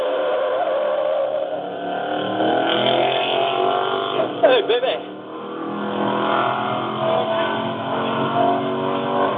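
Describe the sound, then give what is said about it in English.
An off-road race truck, the silver-and-gold Dorman Family Racing rig DRF 6108, idles steadily with a low, continuous rumble beneath indistinct voices and background chatter, with a brief sharper burst of noise midway through. “Very quiet right now, just sitting idling.”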